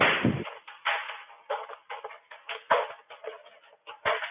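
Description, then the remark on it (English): A towel is whipped through the air as an exercise, swung outward rather than straight up and down, snapping again and again in a quick, uneven rhythm, each swish a short burst of sound, with no talking. “So when you do this, you're reaching out, not straight up and down, because if you just go straight up and down, see how this whips back? So you're whipping out like this.”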